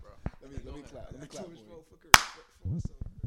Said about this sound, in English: Let me clap.